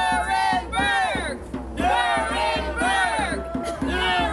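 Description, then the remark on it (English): A large crowd of protesters in New York City, marching from Pfizer's headquarters to the United Nations, chants "Nuremberg, Nuremberg" in loud, rhythmic unison, the phrase rising and falling in waves over a steady din of voices, with occasional shouts and a faint drumbeat underneath. “That, as you can see, is a crowd of protesters in New York City over the weekend marching from Pfizer's headquarters to the United Nations, chanting Nuremberg, Nuremberg, and holding signs like arrest Fauci and no clot shots.”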